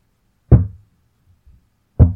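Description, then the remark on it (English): Two loud knocks on a door, spaced about a second and a half apart, with a faint low thud between them and no one speaking. “And it knocks again, and then the cabinet door swings open.”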